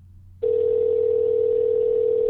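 A telephone ringing tone on the line begins after a brief faint hiss and holds as one steady, loud, unbroken tone to the end, with no voices and no answer.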